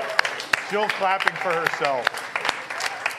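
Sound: one person clapping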